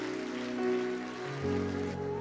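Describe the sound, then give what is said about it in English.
An audience at a morning church service claps steadily to celebrate those who raised their hands to God, a dense, continuous patter of many hands that holds at an even loudness, with sustained musical tones ringing underneath. “Give you one more hand clap this morning.”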